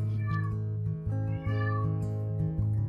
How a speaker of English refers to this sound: And evidently you brought a cat with you.